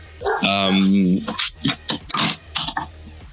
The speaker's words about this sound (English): Sorry, neighbor has this annoying, silly mutt. Bark, it's fine. Let the dog speak. Let the dog bark if it must.